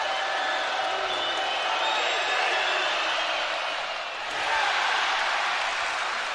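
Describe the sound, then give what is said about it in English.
A large arena crowd at a BYU basketball game erupts in a sustained roar of mixed groans, cheers and whoops as a free throw is missed in the final seconds, loud and dense throughout, dipping briefly before surging again. “Here comes the first one, and the crowd will tell you what happens.”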